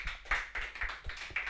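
Applause from a small group: quiet, crisp hand claps arriving in uneven bursts, roughly four or five per second, with no voices over them.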